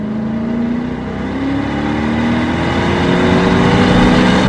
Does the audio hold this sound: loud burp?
no